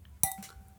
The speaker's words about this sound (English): I just bumped the wine glass against my tooth. Was that your tooth? So hard.